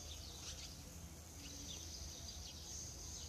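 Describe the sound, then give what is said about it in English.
Faint birds chirp and twitter outdoors in a backyard garden, short scattered calls over a steady high insect-like hiss and low background rumble, with no one talking. “And the lesson what we learn from the birds today is respect each other.”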